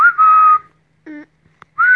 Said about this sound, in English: I knew I must have her back to talk to and play with if I was going to make it through the winter. I whistled.